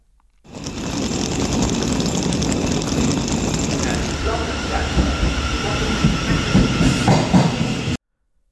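A steady, loud rumble of a passenger train rolling along the rails, with rhythmic clicking of wheels over track joints and a constant hiss, building slightly toward the end before cutting off.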